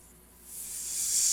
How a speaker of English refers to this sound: Little sizzling of the grill there.